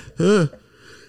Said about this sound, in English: Sorry, I'm about to sneeze here in a second.